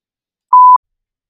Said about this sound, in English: Let's take the podcast break. So podcast listeners, you're going to hear the beep. And then we will be right back.